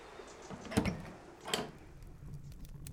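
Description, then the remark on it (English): A wooden cabin door is opened from the porch: a sharp latch click followed by a second knock-like clunk, then a quiet room tone with faint creaks. “You step up onto the porch and open the door.”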